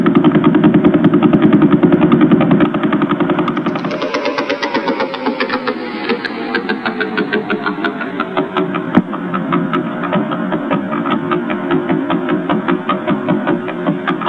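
Millisecond pulsar radio signals turned into sound: a loud, steady, engine-like buzz of very rapid pulses that shifts a few seconds in, turning brighter with a slowly sinking tone. No voices.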